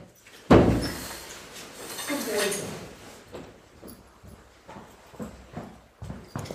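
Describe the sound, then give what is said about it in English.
A sharp knock, then irregular tapping and clattering, like a dog's paws scrabbling and moving about on a hard floor. A voice is briefly heard underneath. “Bloody hell, your dog's an absolute reprobate, isn't it?”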